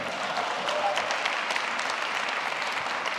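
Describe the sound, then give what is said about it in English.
A church audience applauds steadily to welcome new members joining the church, a dense wash of clapping hands at an even, fairly loud level throughout, with no voices standing out above it. “So if you welcome them, would you just let it be saying amen or applaud, whatever you want to do?”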